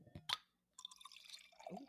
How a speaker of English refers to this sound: Let me give you guys some ASMR. We're going to pull up. I got to crack the... Take the top off. I'm going to pour.